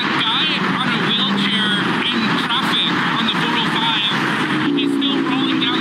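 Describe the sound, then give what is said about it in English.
A steady, loud roar of traffic on one of the busiest freeways in the country at night, cars rushing past continuously as a man in a non-motorized wheelchair slowly wheels down the freeway, while voices talk over the constant heavy rush of vehicles. “Here's a little bit of audio from the video when the man is slowly wheeling down the freeway as cars are zooming by.”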